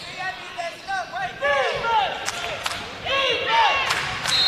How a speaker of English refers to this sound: The socially distanced COVID crowd here is fairly loud in this game.